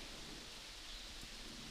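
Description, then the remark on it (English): Steady, soft hiss of rain falling outdoors, heard from just inside, a continuous even wash with no distinct drops standing out. The rain is quiet, and nobody speaks. “But the birds don't care that it's raining.”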